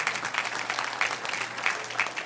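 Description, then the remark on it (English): A church audience claps during a sermon after the pastor says God owns everything: a dense wash of many hands with a few sharper claps standing out, sustained and moderately loud throughout with no one speaking. “I'm going to wait while you clap your hands here.”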